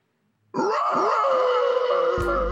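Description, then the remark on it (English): After a brief silence, a person lets out a loud, sustained imitation of a panther roar, raspy and growling, with a pulsing low rumble running through it for about two seconds. “That was like a zombie panther roar.”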